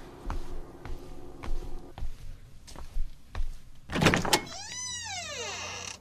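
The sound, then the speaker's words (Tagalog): A few soft footsteps approach, then a door latch clunks loudly and the door swings open with a long, drawn-out creak of its hinges, with no one speaking. “Bubuksan ko na yung pinto.”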